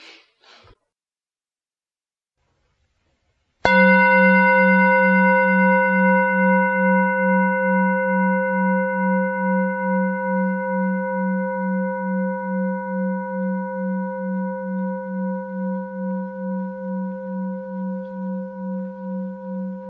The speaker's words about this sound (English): And then when I ring the bell twice after the session, we'll quietly leave and we'll go our way.